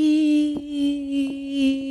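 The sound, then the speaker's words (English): A sustained, nasal buzzing tone like a mosquito's whine, made by a voice, swelling and fading every half second or so as it sweeps closer to and away from the microphone. “he sounds like a mosquito as he's singing because he starts doing his head back and forth on the mic?”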